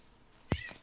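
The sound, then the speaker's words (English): A female pet cat lets out a short, sharp meow followed by a second brief chirp, both fairly loud against a quiet background. “Yeah, my cat bit me. I heard something.”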